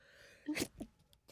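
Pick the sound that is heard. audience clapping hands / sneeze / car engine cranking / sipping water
sneeze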